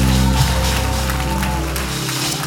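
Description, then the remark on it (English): A church audience claps for the Lord steadily in a dense, continuous patter, with low sustained musical tones humming underneath. No one speaks over it. “Come on, give the Lord a mighty clap of hands.”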